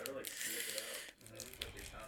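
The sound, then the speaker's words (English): A chip bag crinkles and crackles almost nonstop as it's pulled open, a dense rustling with one brief lull partway through and a faint voice murmuring underneath. “Is man about to open it already?”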